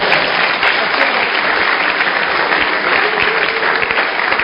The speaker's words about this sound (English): You are going to remove it. Clap your hands for it.